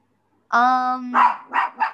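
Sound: dog barking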